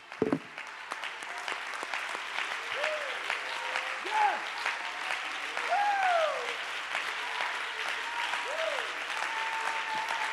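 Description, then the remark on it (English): A church audience claps steadily for about ten seconds to give God praise and stand with a group of young men, a dense, continuous patter of many hands, while voices rise and fall above it in cheers and calls. “Let's clap our hands and give God.”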